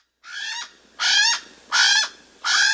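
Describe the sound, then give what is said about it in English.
A Hawaiian crow (alala), an all-black bird of the crow family about 18 inches long from beak tip to tail end, gives four loud, drawn-out, harmonic calls in a steady rhythm. Each call is about half a second long, with short pauses between, and no one is talking. “So yeah, our alala friends are also known as the Hawaiian crow.”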